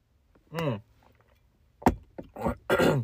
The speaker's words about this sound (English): This is as authentic as you're going to get. Coffee sip.